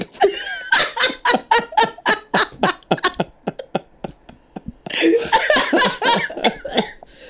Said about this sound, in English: Oh, y'all, it's that time of year when I start coughing. I'm sorry. You cough every time.